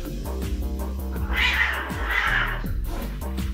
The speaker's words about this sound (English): We were still eating when Stinker returned, and as soon as he clapped eyes on Mum, his back went up and he started meowing in a very edgy way.